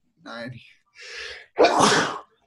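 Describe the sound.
A loud sneeze: a short voiced build-up and a sharp breath, then an explosive, noisy burst lasting about half a second before silence.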